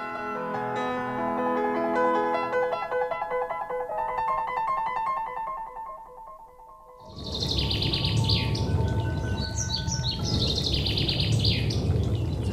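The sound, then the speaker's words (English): A thrush sings clear, repeated melodic phrases, with no talking. Midway, a loud rushing background noise rises beneath high, rapid chirping notes that continue to the end. “Thrush, is it?”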